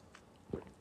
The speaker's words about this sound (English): Sorry for the pause. I'm just sipping on my coffee.